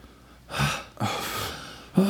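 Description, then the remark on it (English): A breathy gasp for air after holding the breath, followed by a longer, heavy rush of breath as if recovering; a voice briefly starts at the very end. “I'm holding, why am I holding my breath?”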